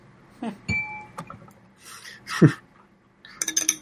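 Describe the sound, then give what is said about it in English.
Beer is poured into a glass: a few sharp glassy clinks and a ringing tap, then bursts of fizzy, splashing liquid noise that swell and fade, with no talking. “Pouring the rest of my beer.”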